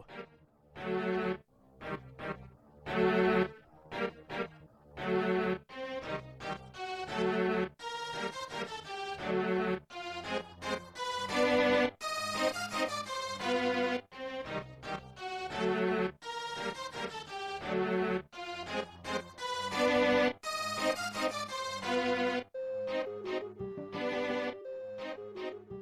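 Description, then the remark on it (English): An upbeat instrumental music piece plays on its own, with bright melodic notes, steady rhythmic pulses and full, loud sound throughout, with no voices. “I'm going to cue up some music. And when it stops, we'll go back to Yoshi's Island”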